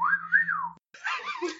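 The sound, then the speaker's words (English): A man whistles a single sliding note that rises and then falls while looking at someone, fairly clear, followed after a brief pause by a short burst of breathy, rustling noise. “All right, well, he'll, as he's looking at you, he gives a whistle.”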